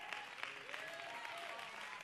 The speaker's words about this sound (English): So that's why we Pentecostals are not ashamed to clap our hands and stomp our feet.